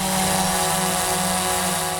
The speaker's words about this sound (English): That's probably because drones really aren't that quiet. Even the small ones that hobbyists buy can be pretty loud.